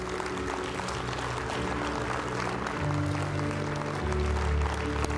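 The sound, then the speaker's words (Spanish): A standing church audience gives a big round of applause to the Lord for people taking a step in God, a dense crackle of many hands clapping at once, while a low sustained musical drone and bass tones sound underneath throughout. “De un aplauso grande al Señor por ellos.”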